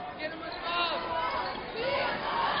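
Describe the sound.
A basketball crowd shouts and clamors in a dense, continuous din of many voices, fairly loud and close, swelling a little in the middle and again near the end.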